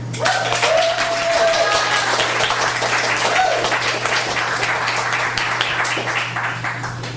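An audience at an evening poetry reading applauds steadily, a dense wash of clapping that holds at an even, fairly loud level for several seconds, with a few brief whoops or cheers rising through it early on.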